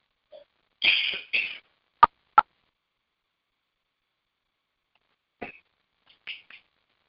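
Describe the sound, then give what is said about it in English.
A few dry coughs and throat-clearing sounds from a person getting over a cold, some in quick pairs, separated by pauses of silence, with no talking. “Sorry, I'm getting over a cold, so I have a little bit of a cough here.”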